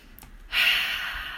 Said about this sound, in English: And begin breathing in through your nose and out through your mouth. Just loosening up.